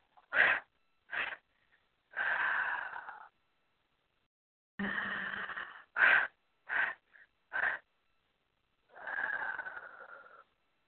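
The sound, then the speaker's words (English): Deep, audible breathing, alternating quick sharp intakes with longer, rushing exhales, several cycles in a steady, deliberate rhythm with brief pauses between, and no talking. “The Asian Tadoi, and breathing.”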